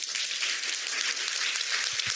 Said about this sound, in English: first off, in this room, if you are a clinician, investigator, scientist working on cannabis, raise your hand. Matter of fact, don't raise your hand, stand up. And I want everybody seated to go ahead and give them a big round of applause.